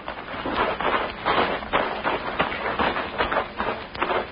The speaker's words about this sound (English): Easy on those footsteps. Walk along the edge of the grass.